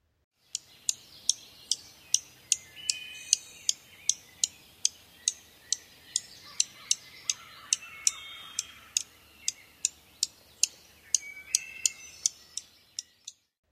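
bird, dark-eyed junco calls

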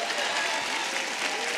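crowd, audience applauding

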